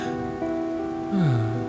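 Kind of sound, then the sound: nature, rain falling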